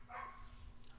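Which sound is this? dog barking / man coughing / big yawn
dog barking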